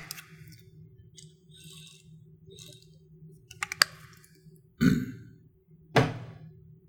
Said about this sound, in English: This is Luke chapter 8, and after a long reading like that, I'm going to just take a brief drink of water.